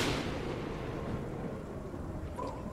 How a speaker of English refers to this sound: Crashing of lightning on command.